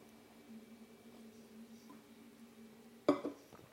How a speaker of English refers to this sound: Okay, let me get a quick sip of coffee and let me wrap up with this.